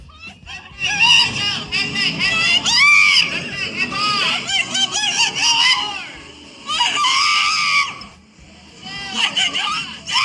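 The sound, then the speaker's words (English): A woman on a Slingshot amusement ride screams loudly and shrilly in long, repeated bursts, with brief pauses between them, over a low rushing rumble like wind on a fast-moving ride. “So she's screaming.”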